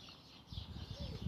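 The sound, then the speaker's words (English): Birds scuffle and squabble in a fight, with a burst of flapping and thumping and a brief call mixed in, fairly quiet and over in about a second. “whoa, look at these birds. These are coming in for the broadcast.”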